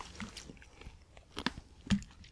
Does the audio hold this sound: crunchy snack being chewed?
yes